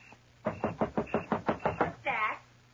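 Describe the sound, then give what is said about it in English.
About eight quick, evenly spaced knocks rap on a front door, fairly loud, followed by a brief murmur from a voice. “somebody at the front door.”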